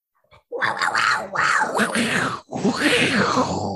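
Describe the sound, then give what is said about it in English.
A person imitates big cat noises with their voice for the Jaguars team: loud, raspy growling roars in three long bursts, each rough and throaty, separated by brief breaths, with no ordinary speech. “Man, the cat noises get better every time.”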